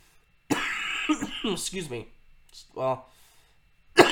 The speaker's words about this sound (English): excuse me, still dealing with the coughs